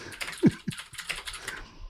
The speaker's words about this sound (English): Do you mind not typing so loud?